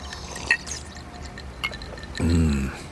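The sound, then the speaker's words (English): Liquid pours into a glass while an old-fashioned cocktail is mixed, a short gurgling stream with a rising fill tone, preceded by a few small clinks and splashes. “A little sugar, a little water, ice, acid.”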